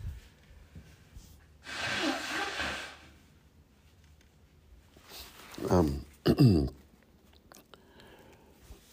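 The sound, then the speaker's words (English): Someone blows their nose: a long, breathy blast of air, a pause, then two short, honking snorts in quick succession, with quiet background sound in between. “Excuse me, I blow my nose again, folks.”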